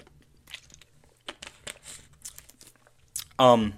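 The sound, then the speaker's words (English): Sipping green tea: a few soft slurps, small clicks and mouth noises, then a loud, brief voiced exhale after the drink. “Sorry, I'm gonna take a sip of some green tea real quick.”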